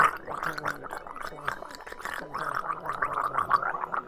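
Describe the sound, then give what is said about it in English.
A person imitates with their voice water pouring out of a mouth as someone starts speaking, a steady bubbly, rattling burble with a wavering hum underneath, lasting about four seconds at an even, moderate loudness. “And, like, as she starts speaking, water just pours out of her mouth like she's a gargoyle.”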